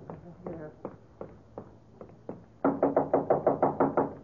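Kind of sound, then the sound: impact, knocking on a door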